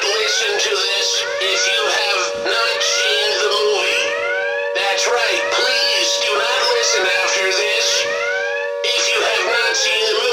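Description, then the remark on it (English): A loud alarm siren sound effect wails continuously, its pitch sweeping up and down in rapid repeating cycles over a steady droning tone, with a couple of brief dips along the way. “So we're gonna go ahead and sound the alarm.”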